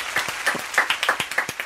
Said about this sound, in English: Woo, guys, round of applause.